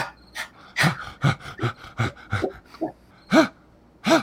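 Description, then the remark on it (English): A voice imitates a man's labored, dying breaths: a run of about ten ragged, panting gasps, fairly loud, ending in two longer strained, groaning inhales. “He stops breathing.”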